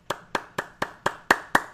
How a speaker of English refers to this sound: As always, gotta clap it up. I love that.